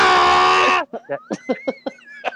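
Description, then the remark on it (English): A voice imitates a screaming tractor-pull engine, likened to an old Oliver tractor with a Detroit 371 engine, with a loud, sustained, buzzy roar, then breaks into a quick series of short, choppy bursts over a steady whining tone. “It's either Lloyd Christmas doing it, or it's like an old Oliver tractor with a Detroit 371 engine. You know what the most annoying sound in the world is?”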